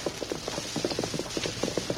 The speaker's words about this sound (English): They heard the clump of approaching hoofs long before the horsemen came near.